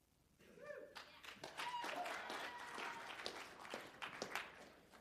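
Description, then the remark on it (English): A church audience breaks into steady applause that swells quickly and holds, dense overlapping claps with a few sharper ones standing out, loud, with a brief voice murmur at the start. “Clap now, because you may not be clapping in a few minutes.”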